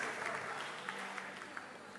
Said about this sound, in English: Let's clap for him, he's done well.